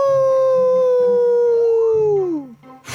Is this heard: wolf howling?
yes